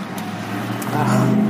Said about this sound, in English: I wish I could take a picture of this traffic right now, you guys. It's Sunday at 2:30, and the metering lights are on, which are, you know, like stop and go lights. So only X amount of people are allowed onto the bridge at a time.